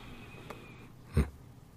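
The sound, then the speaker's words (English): A single heavy, forceful breath bursts out near the end, fairly loud against a quiet, steady background hiss, with a faint soft tick shortly before it. “You really are breathing heavy.”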